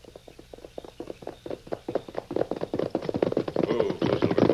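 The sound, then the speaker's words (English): Many hooves pound the ground in a fast, dense rhythm that builds louder and thicker as several horses carrying riders break into a gallop, gathering speed. “Get your horses, boys. We're ready to ride.”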